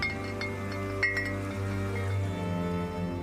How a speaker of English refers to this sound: I can hear the bottles on the breeze now, every day. I hung them all up on the big tree outside my kitchen window, and they sparkle and shimmer in the sun. I walk through them sometimes, tapping the glass and hearing them chime against each other.